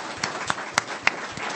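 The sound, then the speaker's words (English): A small audience applauds to congratulate the winning team of a competition. It is a steady wash of clapping with a few sharper claps popping out at a roughly even pace. Fairly quiet, with no voices. “Congratulations to the unpronounceable name team. Give them a clap.”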